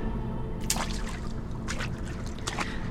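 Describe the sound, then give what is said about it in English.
Three sloshing splashes at a slow, steady pace, like feet stepping down into water, over a low, constant rumble. “Step down into the water.”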